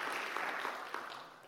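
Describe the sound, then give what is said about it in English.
A church audience claps together during a service, applauding the church board's vote to keep financially supporting Outliers through the end of next March: a dense, steady wash of many hands that holds for a moment and then gradually tapers off, with no voices over it. “Church, you can probably give a clap for that.”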